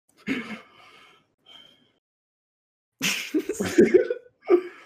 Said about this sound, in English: I hope that yawn was picked up.